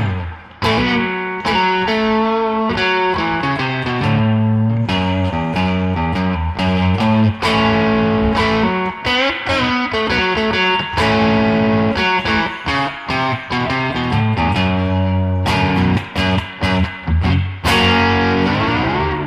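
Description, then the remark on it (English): A Squier Bullet electric guitar on the neck pickup, run through a vintage Boss SD-1 overdrive pedal with a little reverb, plays a continuous run of warm, slightly gritty notes and chords, loud, with no talking. “Right now, I'm running it through my vintage SD1, my Boss SD1, and a little bit of a reverb, but nothing else, really.”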